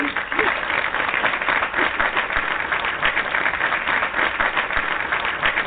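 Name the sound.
applause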